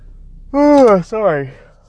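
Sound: yawn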